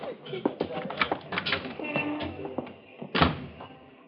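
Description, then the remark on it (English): A door is handled with clicks and knocks of the latch, then shuts with a solid thunk near the end, over a low muffled background. “Out the door and smile.”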